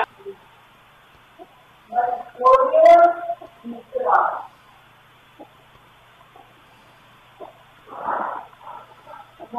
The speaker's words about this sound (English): Is that something? It's breathing.